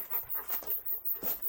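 A big puppy of about 140 pounds pants heavily in quick, rhythmic breaths, with soft whimpering mixed into the breathing.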